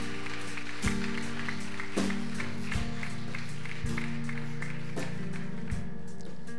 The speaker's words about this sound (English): Would you just give them applause today for being an example?